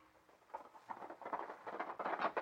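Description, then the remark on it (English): The hooves of a ridden horse clip-clop in a quick, steady rhythm, starting faint and growing louder as if approaching at a brisk pace, with no voices present. “Hey, you! Pull up that horse! Stop, you hear?”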